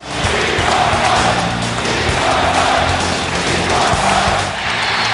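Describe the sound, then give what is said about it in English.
A huge arena crowd in Philadelphia at a Sixers game stands, roars and cheers without a break, demanding Michael Jordan's return late in the fourth quarter. It is a loud, dense wall of voices that swells slightly and holds steady for the whole stretch, with no single voice standing out. “A whole building standing and cheering.”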